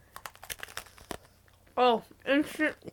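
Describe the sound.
Crisp crunching clicks from biting and chewing a cookie-like snack fill the first second and a half, followed by two short voiced murmurs.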